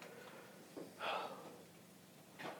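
Heavy, labored breathing of a man who sounds exhausted: a few ragged, breathy gusts spaced irregularly, the strongest in the middle, with no talking.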